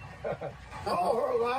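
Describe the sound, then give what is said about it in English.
In Odd, West Virginia, two quick, moderately loud dog barks in close succession, followed by a sustained, wavering high-pitched call from a man who does not speak, carrying on after the barking stops. “You're hearing a dog bark, but the other high pitch is not the dog.”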